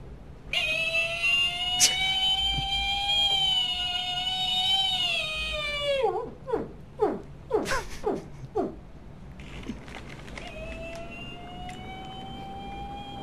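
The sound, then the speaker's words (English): A cast member imitates whale song so that listeners on a submarine above will take it for a whale: long, wavering high-pitched tones, then a run of quick descending swoops, and finally another sustained tone. It is moderately loud, with no talking. “And so one of their staff, one of their cast, has to do whale song to convince them that they are not a submarine.”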